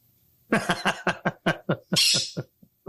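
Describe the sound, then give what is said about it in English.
A pet bird squawks in a rapid series of about a dozen loud, harsh calls, with one longer raspy screech near the end and no talking. “I'm about to have a bird for supper.”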